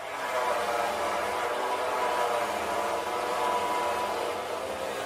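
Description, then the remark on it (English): A saw cutting steadily, a loud, unbroken rasping whir with a faint tonal hum running underneath, holding an even level for about five seconds with no voices. “Saw is correct.”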